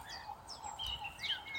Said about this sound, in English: Looking at them, the chickens are extremely pleased to be out and about. They are really scratching in the dirt and digging stuff up.